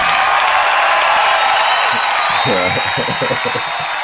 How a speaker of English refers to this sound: And I want to give a big round of applause, please, as you help me welcome to the show, my man, Darlington Nagbe.